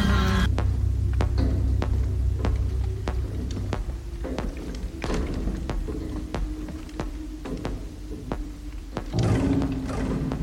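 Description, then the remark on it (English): A steady series of sharp, echoey clanks repeats roughly every half second like radar blips, over a low droning hum, with no voices. “That echoey clank. It's like the blip of his radar.”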